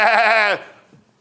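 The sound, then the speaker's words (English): A person mimics a sheep with one loud, wavering bleat lasting about half a second, the quavering 'baa' cutting off abruptly and leaving only a faint trailing sound. “You're a sheep.”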